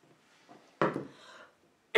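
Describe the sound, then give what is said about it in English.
A single harsh cough bursts out, then tails off over about half a second, and another cough starts right at the very end. Quiet background, no talking. “Excuse me, there goes the coughing.”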